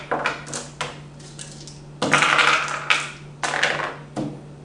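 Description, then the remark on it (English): Dice are rolled during a game, rattling and clattering across a hard tabletop in several quick bursts of sharp clicking impacts, with a faint steady hum underneath and no voices. “You sure those aren't loaded dice?”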